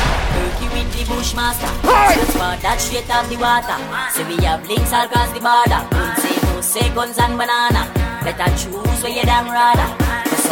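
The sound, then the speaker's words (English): Gunshot sound effects crack out in a rapid, rhythmic string of loud bursts over a pounding music track, starting partway through and continuing to the end. “You make it all thing clap. Boy, you get gunshot.”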